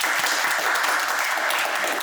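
An audience applauds steadily, a dense, even patter of many hands clapping at a constant, fairly loud level with no voices standing out.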